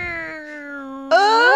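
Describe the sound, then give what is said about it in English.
A person imitates a cat with a long, drawn-out meow, holding a steady tone before it abruptly swells louder and climbs in pitch at the end. Clear, no other sounds. “Is it like a meow or a purr or a meow?”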